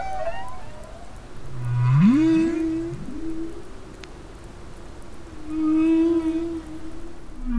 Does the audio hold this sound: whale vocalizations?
yes